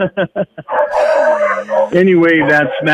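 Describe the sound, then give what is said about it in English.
A female purebred Blue Heeler, an Australian cow dog, barks four quick times, then lets out a long, drawn-out howling whine that wavers in pitch, with a voice briefly speaking over it. “It's a Blue Heeler, purebred Australian cow dog.”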